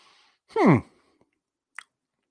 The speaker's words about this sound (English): So let's take a sip here.